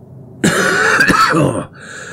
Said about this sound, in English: The booming laugh that followed shook the cabin, then descended into a wheezing, coughing fit.